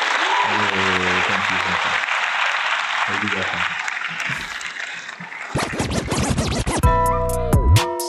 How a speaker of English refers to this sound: in favor of the soundboard working, I guess we'll give the soundboard a round of applause.